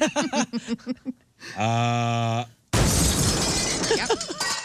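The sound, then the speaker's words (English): Brief talking, then a long sustained yell, followed by a sudden loud crash of breaking material and scattering debris as a man crawling through an attic space falls through a bathroom ceiling when a support gives way; the rumble continues while voices return underneath. “He was crawling through when a support gave way, and he came crashing through the ceiling of the bathroom.”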